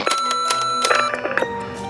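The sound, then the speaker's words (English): An answering machine's out-of-tape beep, signalling that a caller's message has stopped recording: a loud, steady electronic tone with layered harmonics and sharp clicks, holding for about a second before tapering off. No voices. “Don't worry, a loud beep and short message plays when this happens, informing callers their message has stopped recording”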